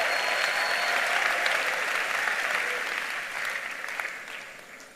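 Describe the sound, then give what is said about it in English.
An audience applauds to celebrate God in a dense, sustained wash of clapping that holds steady for several seconds, then gradually thins and fades toward the end. “For what God is doing here through this great man of God and his wife and the team, let's celebrate God with a big, big clap of it.”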